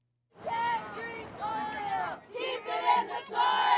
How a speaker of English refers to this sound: leads a crowd of hundreds in a rally against the pipeline.